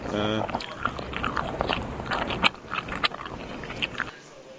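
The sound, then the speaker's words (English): Someone eating mac and cheese, with steady wet, smacking chewing and soft sticky clicks for about four seconds, preceded by a brief voiced sound at the very start. “It's someone eating mac and cheese.”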